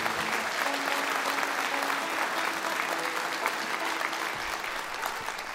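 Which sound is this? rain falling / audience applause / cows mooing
audience applause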